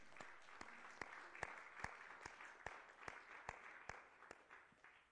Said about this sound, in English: Give him one more hand clap.